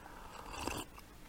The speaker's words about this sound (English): Pardon me while I take a sip of coffee.